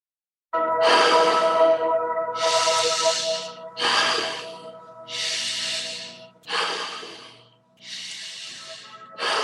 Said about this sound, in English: Keep breathing nice and deep. Really expanding your stomach as much as you can, into your chest, breathing up into your head. 10 more breaths.